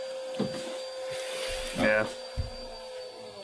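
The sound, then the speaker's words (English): A roommate's vacuum cleaner drones steadily, its muffled motor hum holding a constant pitch throughout, with a few brief thumps and a short burst of voice over it. “One of my roommates is sucking himself off with a vacuum, I think.”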